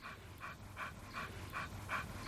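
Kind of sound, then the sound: animal, dog panting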